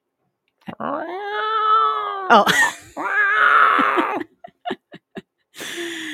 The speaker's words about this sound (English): No, you know what? Fucking cat fights.